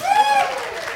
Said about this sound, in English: round of applause.